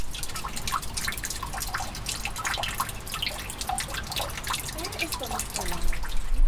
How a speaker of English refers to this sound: Ooh. And there's like a little pond down there. Oh, and there's a waterfall. Yeah. You might be able to just pick it out.